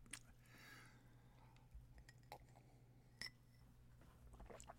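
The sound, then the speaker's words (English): Someone quietly takes a sip of a drink, with soft mouth and swallowing noises and a couple of faint clinks over a low steady hum. No one speaks. “Another sip.”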